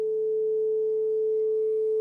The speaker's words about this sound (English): Not needing to do anything, just listening to these tones.